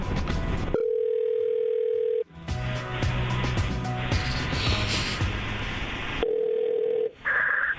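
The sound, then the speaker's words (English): A steady telephone dial tone gives way to several seconds of busy clicking and whirring as a number is dialed to call a woman back, then a short ringing tone sounds on the line. No one speaks. “Are you going to call her back? Of course. Hang on.”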